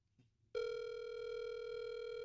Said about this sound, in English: Calling Stephen Levine, mobile.